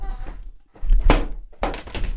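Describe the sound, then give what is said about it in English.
After the keyboard cord holder is moved, a hand pushes through a table's cord hole: dull thumping bumps and scraping rattles, with a sharper knock near the middle and a rougher burst of handling noise toward the end. “For those of you listening, he moved the keyboard cord holder and put his hand through the hole.”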